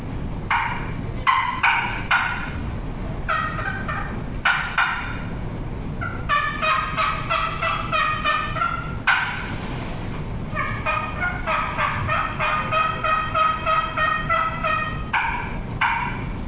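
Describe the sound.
A trumpet-style turkey call played in bursts of sharp, rapid clucks and cutting notes, loud, with brief pauses between flurries and no voices.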